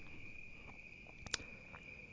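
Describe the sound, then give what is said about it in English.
Crickets chirp steadily outdoors at night, a continuous high-pitched trill that stays at a constant level, with a brief faint tap partway through and no talking. “They loved the crickets and the sounds of nature.”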